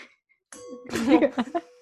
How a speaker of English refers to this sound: Is that your wine glass?